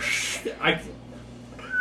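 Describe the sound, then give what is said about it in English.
A person makes a breathy, airy whistle, imitating a steam whistle, with a few wavering tones and a short, thin high note at the end. Moderately loud, with no speech. “I can't whistle that high. I can't do, like, one of the high-pitched, like, steam whistles.”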